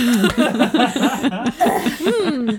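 A person coughs in a rapid string of harsh, voiced bursts with wheezy, strained breaths between them, loud and close for a few seconds without any talking.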